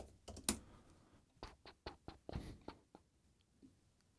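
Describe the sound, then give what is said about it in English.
Irregular keystrokes tap on a computer keyboard as a quick Google search about England is typed. About a dozen crisp clicks come in uneven bursts, with a short pause partway through and no voices. “Zooming out, typing in England.”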